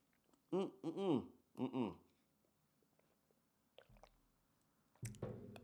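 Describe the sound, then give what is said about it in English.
Tea is sipped: a few short voiced hums, a small click, then a brief, soft slurping sip at the end, all fairly quiet with no speech. “I'm going to take another sip of tea.”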